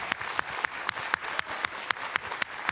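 An audience applauds with a steady wash of many hands clapping, while a few sharper claps beat out a regular, quick rhythm on top. No one speaks.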